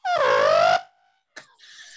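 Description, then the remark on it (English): A voice mimics an elephant's trumpet with one loud, brassy, wavering blast lasting under a second, followed by a brief pause and a shorter, thinner squeal. “And I get on my wife, and I'm just all like, and then I do that elephant sound.”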